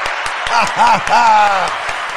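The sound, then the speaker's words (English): A round of applause for Dykeman, uptown: steady clapping as a dense wash of hand-claps, with a few louder individual claps, while voices whoop and cheer over it in rising and falling calls midway through. “Round of applause for Dykeman.”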